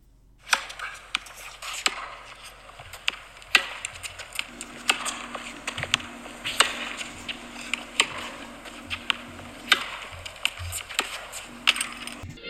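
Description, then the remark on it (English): Tennis balls tumble in a clothes dryer, thumping and clattering at an irregular, fairly quick pace over a steady low motor hum. No one speaks. “So, we had in Chappie's dryer, round two, it was some of Bjorn Borg's 1980 balls, tennis balls.”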